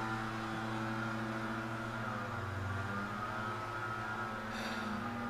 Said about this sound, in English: Some fucking asshole is blowing, using a leaf blower right outside my front door.